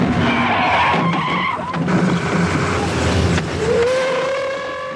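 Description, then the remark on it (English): A car's tires screech in a long, loud skid lasting several seconds as it hits a man outside a museum, the squeal rising and wavering over a dense roar of engine and road noise, with no voices. “But the man who disagrees with him is almost immediately hit by a car and killed outside the museum.”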